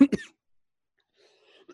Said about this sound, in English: I coughed on my coffee because I think that I was rubbing it in too hard, and that's okay.